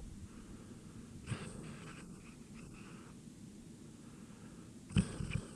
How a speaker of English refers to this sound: Oh, Hope snoring there. I get really, really sad when... Oh, do you want a close-up of the snoring? Hang on.